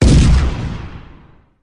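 A single loud cannon blast booms out with a sharp, heavy attack, then rumbles and fades away over about a second and a half, with no voices present.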